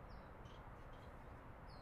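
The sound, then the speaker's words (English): Faint bird chirps sound a few times on a sunny morning, short high calls scattered over a steady low outdoor hiss, with no one talking. “It's a beautiful morning. Sun is shining. Birds are chirping.”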